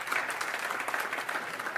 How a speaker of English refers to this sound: Now, is anybody with me? Amen. You can clap. There you go.